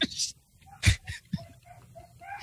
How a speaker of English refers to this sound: It's my other dog. We have 5 dogs eh, so it's crazy here.